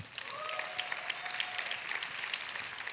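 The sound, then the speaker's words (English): An audience claps steadily, a dense wash of many hands with no speech, holding an even loudness for a few seconds while a faint high tone glides briefly underneath. “It's nice they clapped, I just want to tell you.”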